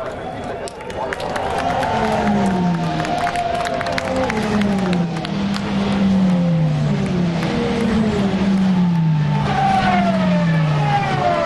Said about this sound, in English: Oh, the Astons really scream.